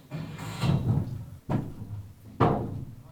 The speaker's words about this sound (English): As you can probably hear, the scaffolding is going up as I speak. Well, that only took them an hour and a half to scaffold the entire front of the house. That's not bad. There were four lads, very fit, unlike me, and they've done it.